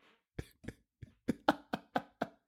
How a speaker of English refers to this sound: Sorry, I was coughing.